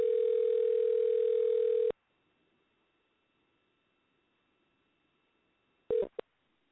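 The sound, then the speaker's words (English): A telephone ringback tone: a loud, steady electronic tone lasting about two seconds, a long pause, then the tone starting again briefly. No one speaks. “This call is being recorded. It's ringing.”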